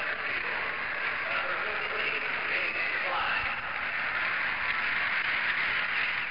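A baseball crowd cheers at news that Montreal is leading the Mets 1-0, in a steady, sustained roar that holds at an even, fairly loud level for several seconds, with no voices speaking over it.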